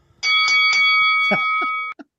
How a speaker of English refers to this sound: Now let's ring the bell.